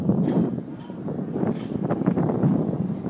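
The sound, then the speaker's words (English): Irregular metallic clanks and taps of a flag's hardware knocking against its metal pole over a steady rush of wind on a windy day. “That's the sound of a flag clanking against its pole.”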